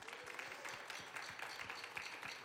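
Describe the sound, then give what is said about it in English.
A crowd of women at an evening gathering applauds themselves for being there, a dense wash of many overlapping hand claps at an even, moderate loudness with no voices on top. “So give yourselves a round of applause for being here.”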